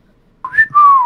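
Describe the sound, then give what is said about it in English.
A person whistles a short tune, clear and fairly loud, with a quick rising note sliding into a longer, sustained falling tone, and no talking. “Do that chocobo whistle one more time for me, man.”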